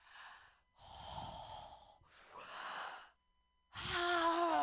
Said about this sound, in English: Of course. Let me finish my breathing exercises.